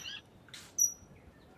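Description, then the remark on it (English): A saddleback on the ground gives a sharp, high-pitched whistled call, with a brief burst of chirps just before it, over a quiet background. “So that high pitch, whee, is the saddleback on the ground.”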